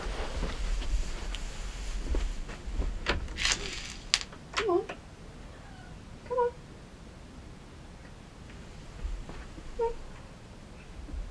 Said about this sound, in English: Oh, hold on. My cat is scratching at the door.